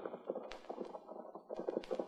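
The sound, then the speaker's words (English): A herd of wild horses gallops in a valley with rapid, overlapping hoofbeats drumming steadily throughout, loud, with a few sharper thuds standing out from the rumble. “At a narrow gap opening into the valley, they paused to watch the great wild horses”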